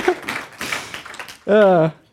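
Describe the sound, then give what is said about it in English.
An audience claps lightly and unevenly for over a second, scattered soft claps rather than full applause, before a single voice calls out briefly. “Come on, if you're going to clap, clap. Don't just golf clap.”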